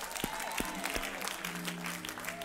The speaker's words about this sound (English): Yes, Lord. Hallelujah. Let's give God a hand clap right there.